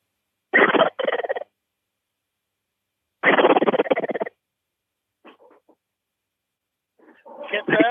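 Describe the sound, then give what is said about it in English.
A Hank Gobble call imitating a turkey gobble: loud, rapid rattling bursts, a short double burst then a longer one, followed by a faint sputter and another rising gobble at the end. “One of the most realistic gobble calls I've ever heard in my life,”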